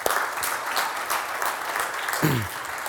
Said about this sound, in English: It's about the King of all kings, right? The great I am. Amen. That's worth clapping for right there.